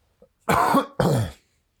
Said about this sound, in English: So, here, hold on. I got a cough. I'm sorry if it's loud.